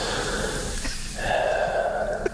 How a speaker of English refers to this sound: Now I hear the deep breathing.